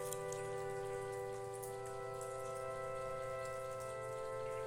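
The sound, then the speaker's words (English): River water flows past a little houseboat on the river in a steady, even rush with a soft, patter-like texture, under a constant droning hum of layered tones. No one speaks. “In fact, we're essentially on the river on a little houseboat, and you can probably hear it flowing past us.”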